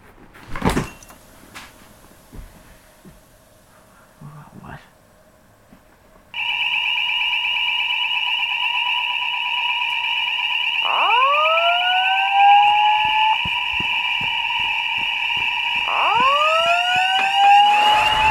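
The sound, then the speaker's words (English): After a few knocks and clunks, a gas detector alarm starts blaring, set off by gas filling a room from a shattered container: a loud, continuous electronic tone that keeps sounding, with two swooping rises in pitch partway through. “The alarm here, you set off a gas detector!”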